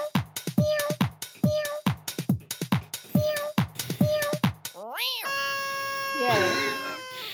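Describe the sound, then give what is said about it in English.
A quick, steady run of a dozen or so short cat meows, followed by a sudden swooping toot and a loud, sustained buzzing blast from a party noisemaker. “I love the noisemaker at the end.”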